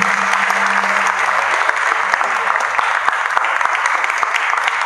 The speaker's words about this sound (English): Let's put your hands down for Jesus this morning. If everyone is clapping, it's better than that.